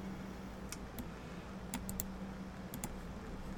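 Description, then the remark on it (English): Sparse, irregular clicks of a computer keyboard and mouse as someone looks up information online, some clicks coming in quick pairs, fairly quiet over a low steady hum, with no one talking. “Everyone likes to hear someone clicking on the internet instead of giving promise to add a commit to Florida.”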